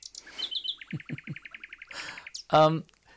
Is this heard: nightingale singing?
yes